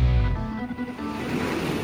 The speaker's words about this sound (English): Why am I still hearing the waves